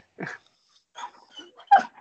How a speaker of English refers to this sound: The dog is getting anxious over this film. I mean, can't blame him.